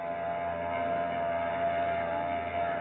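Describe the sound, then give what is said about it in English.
The engine of the ship Brisbane Star drones steadily as it pulls away from the pier at the Embarcadero, a constant loud rumble with a faint tonal hum running through it and no voices. “She's pulling out all right, baby.”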